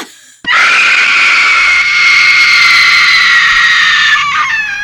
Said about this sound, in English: This girl's in the gym and her scream ought to be used permanently as like a scream sound effect. It is piercing. We should play it here.